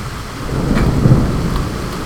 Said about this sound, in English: That's right. Listen to that. I'm hoping for a big one. I'm actually straining my neck now because I'm leaning over into the microphone. And I'm going to sit back in my chair again and put my feet up and enjoy this beautiful rain.